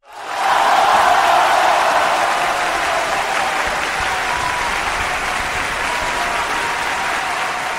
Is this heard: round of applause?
yes